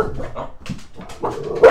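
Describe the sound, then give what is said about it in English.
A dog barks in a rapid string of sharp, yappy barks with a whiny edge, growing louder and ending on an especially loud bark. “Oh, there's a dog.”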